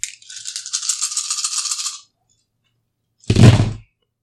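Ten communal dice rattle steadily in a cupped hand for about two seconds, then after a brief pause land on a table with a single heavy clattering thunk. No one speaks.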